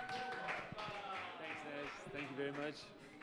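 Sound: audience round of applause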